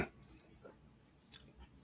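Quiet, close-up mouth sounds of someone taking a drink: a few soft slurping sips and wet swallowing noises spaced over a couple of seconds, with no talking.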